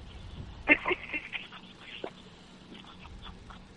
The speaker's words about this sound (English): Take the phone and rub it on that bush that we keep hearing about. A bush? Yeah, okay. Okay. Go right to bush. There you go. Let's see what that sounds like.